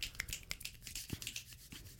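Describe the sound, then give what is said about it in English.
A scattering of quiet finger snaps, several sharp clicks at irregular intervals over a soft hiss, like a few people snapping in appreciation. No voices. “Oh yes, finger snaps.”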